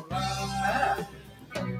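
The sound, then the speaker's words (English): A sheep bleats in a long, wavering, nasal cry lasting close to a second, then falls quiet before a shorter bleat begins. The animal sounds fairly loud, with no talking. “Why is it a sheep?”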